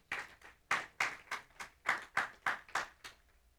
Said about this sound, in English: We have a healthy church who loves well. And I thank you for that. Come on, give yourselves an applaud for that.